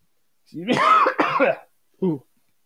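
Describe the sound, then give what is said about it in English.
A harsh throat-clearing cough in two rough bursts from someone who has been talking for 45 minutes, followed a moment later by a short grunting clear of the throat, with no other sounds around it. “Not a COVID cough, by the way, just been talking for 45 minutes.”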